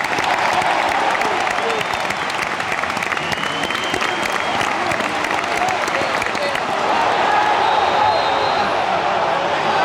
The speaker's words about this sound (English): there was some spirited clapping there for the 21st minute. What's that about? So there's a player called Danny Havke who died of a heart attack, and his number was 21. He was an Espanyol player.